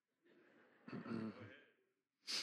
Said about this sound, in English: I got to settle down because I'm breathing hard.